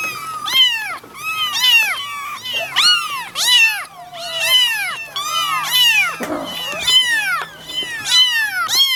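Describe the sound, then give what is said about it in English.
Several orphaned kittens mew over and over on Christmas Eve in high, thin, overlapping cries, fairly loud, forming a nearly continuous chorus of rising-and-falling meows for the whole stretch. “Hello, hello, hello, and Merry Christmas, little orphan kitties.”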